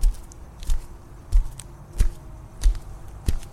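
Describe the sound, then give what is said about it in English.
Steady footsteps on a hard surface as people walk in silence toward a parking lot, about six even steps in an unhurried walking rhythm, each a crisp heel strike with a low thud. No voices, just faint background hush between steps. “We walked in silence a few moments before I began to part, heading for my car.”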